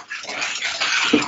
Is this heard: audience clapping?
no